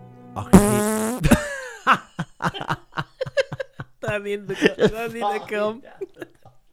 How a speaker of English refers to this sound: He farted in my ear. I immediately regretted it. It's a 4K intercom and the surround sound scared the life out of me. His echoey fart bellowed it around the room. It was a truly immersive experience.